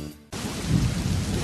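A faint tonal tail cuts off, and heavy rain hisses in abruptly, loud and steady, with deep rolling thunder rumbling underneath. No one speaks.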